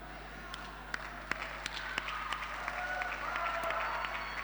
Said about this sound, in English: I know very few are clapping, but that's fine.